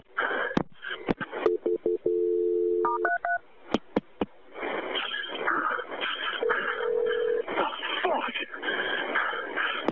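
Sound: telephone ringing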